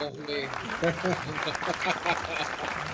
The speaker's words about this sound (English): Hold on, I'm gonna applaud that again.